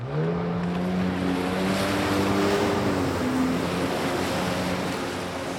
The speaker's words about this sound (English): rides a jet ski across the water toward the necropolis in the distance.